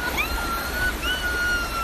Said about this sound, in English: This is Argo Park on the Huron River in Ann Arbor. It's packed. People come here from all over to swim, fish, and paddle.